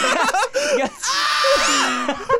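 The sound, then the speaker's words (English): A voice imitates a man screaming: a loud, strained, wavering cry with choppy bursts that swells into a long, high, sustained wail before breaking off. “And he screams.”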